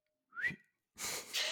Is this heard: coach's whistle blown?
yes